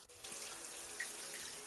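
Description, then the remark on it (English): Steady rushing of running water, like a shower or open tap, hissing continuously at an even level for the whole stretch, with no voices over it. “You taking a shower or something?”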